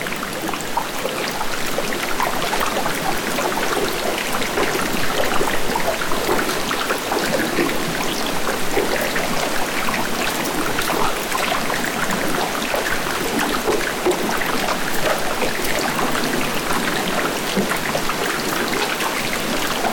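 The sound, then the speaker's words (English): Dense, steady underwater crackling and fizzing from countless tiny bubbles popping as glacial ice melts, a continuous rain-like hiss with no voices, sustained at an even level throughout. “And that can have a different inventory, whether you're hearing melt from a perspective of underwater, where you have the cavitation of bubbles, billions of bubbles popping.”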